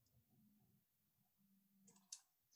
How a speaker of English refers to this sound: Rolly, rolly. The dice go rolly.